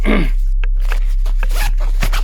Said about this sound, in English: It's got a zipper. I miss question bot. Is that your Fallout 76 bag? Sounds like nylon. Yeah. Sure ain't canvas.